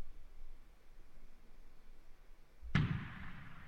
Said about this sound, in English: Nice. There's the fireworks. There's the fireworks, the traditional.